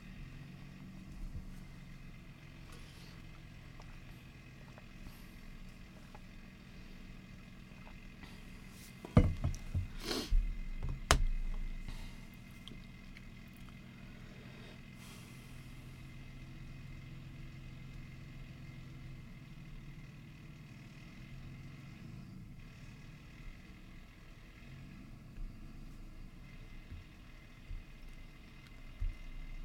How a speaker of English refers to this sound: I'm like, hold on, there's a loud ass bus outside. So let's hold on a second.